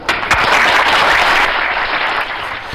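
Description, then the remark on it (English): A burst of steady applause from a crowd, loud and dense with many hands clapping at once, sustained for a few seconds without any voices, given for a correct quiz answer. “It is true that every single Greek person must vote in an election, so that is applause to you, my friend.”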